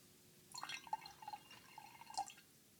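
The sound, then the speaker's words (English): Water is poured over a ceramic teaware bowl and ladle to rinse them, with light trickling, small splashes and clinking drips in short bursts, fairly quiet, with no voices. “When you finish your tea, I rinse the teaware bowl and ladle with water.”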